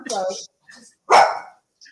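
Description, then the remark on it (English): A dog barks a few times in short, loud bursts, with a brief quieter yelp between them and a faint sound trailing at the end. “Wait a second. Yes. It's my dog.”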